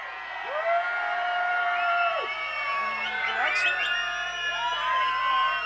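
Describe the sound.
A large festival crowd screams and cheers loudly and continuously, with high whoops and yells rising above a dense, roaring wall of voices for several seconds, screaming for one more track to be played.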